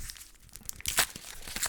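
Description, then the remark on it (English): The papery wrapper on small chilled Underberg liqueur bottles is torn and crinkled off in a quick burst of bright, crackling rips, loudest in the middle and then trailing off into softer rustles. No one speaks. “Rip it off, twist it off, whatever you prefer.”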